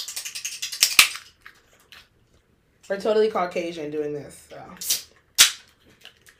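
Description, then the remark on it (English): A quick run of light, tinny taps on a can of a new drink flavor ends in one sharp click. After a pause someone speaks, then two more crisp taps ring out. “Why are you tapping the people can?”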